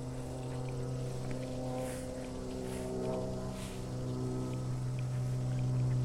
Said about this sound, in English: I hear a pool filter running.